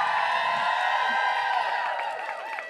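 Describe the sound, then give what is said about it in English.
A live audience cheers and whoops after being asked to make noise if they are gay, a dense wall of overlapping voices with high, rising yells breaking out near the end, loud and sustained for the whole moment. “Make some in the noise crowd, if you're right?”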